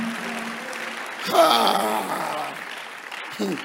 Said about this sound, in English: Give the Lord a better clap of it.